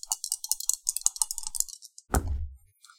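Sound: dice being rolled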